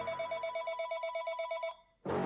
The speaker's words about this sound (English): And he said to me, he said, Dad, don't answer that phone now if it rings. Remember. And I says, no, I won't, son. The phone rang.